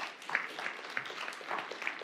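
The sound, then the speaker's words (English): An audience applauds: a dense, steady patter of many hands clapping together for about two seconds, with no voices over it and no pause in the sound. “Oh, hey, could we give them some applause really quick, by the way?”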